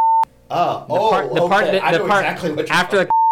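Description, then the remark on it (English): A loud, steady censor bleep tone sounds briefly over a swear word, a person talks for a few seconds, then the same flat bleep cuts in again at the end. “So I'll beep it out.”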